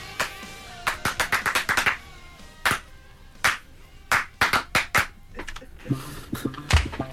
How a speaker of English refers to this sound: It's good clapping. Far out. Live clapping.